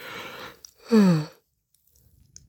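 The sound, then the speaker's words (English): A single yawn from a person short on sleep, recording at 5 a.m.: a long breathy intake of air, then a short voiced groan that slides downward in pitch, followed by near silence with faint mouth sounds. “I haven't been getting much sleep lately. So it's, the yawns are real this morning.”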